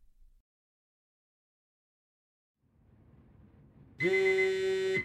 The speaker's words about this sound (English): Every weekday at 6:30 a.m., my alarm goes off.